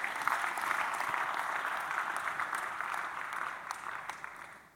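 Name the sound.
audience clapping hands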